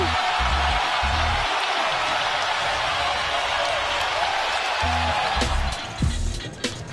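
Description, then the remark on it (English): A large arena crowd on its feet at a basketball game cheers in a loud, steady roar for the whole stretch, with a few dull low thumps underneath and the noise easing slightly near the end. “Oh, the crowd on their feet.”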